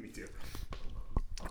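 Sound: chewing food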